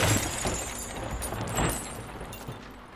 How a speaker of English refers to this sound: Even silence can't last forever. He smashed his lime green car right into the WPA stone exit ramp.